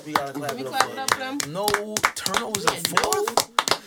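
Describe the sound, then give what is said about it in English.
Hands clap repeatedly in a quick, uneven rhythm, sharp, mixed in with people talking over them. “We gotta clap it up for them.”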